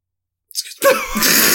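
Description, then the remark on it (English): A single loud sneeze bursts out after a brief silence, opening with a sharp inhaled catch and breaking into a forceful, breathy expulsion that carries to the end. “I didn't see that you were sneezing, like, so you just like...”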